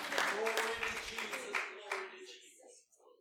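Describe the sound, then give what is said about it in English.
A church audience claps its hands unto the Lord during a morning service, in a loose, uneven patter alongside sustained voices, the clapping fading away over the last second. “Clap your hands unto the Lord this morning.”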